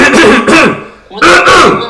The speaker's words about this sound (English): I had to clear my throat so I don't sound raspy.